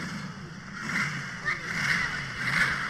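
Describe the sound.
A large-displacement car engine idles low and uneven, a steady rumble with a lopey, pulsing rhythm that rocks the car a little, faint murmuring voices mixed in.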